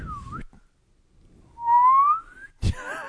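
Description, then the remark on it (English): A spinning homemade roulette wheel gives off a wet, slurping noise: a short wavering tone, a pause, then a long rising whistle-like slide, ending in a sudden burst with warbling overtones. It lands on Solo: A Star Wars Story. “This is the grossest roulette wheel I've ever heard.”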